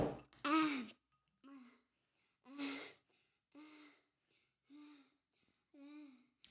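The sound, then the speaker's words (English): Heavy, breathy huffing and puffing from a pregnant person, about seven voiced gasps and exhales in an uneven rhythm, the first few loud and strained, the rest shorter and softer, with no talking. “Really heavy breathing. Sorry, I'm huffing and puffing because I have a baby in my tummy.”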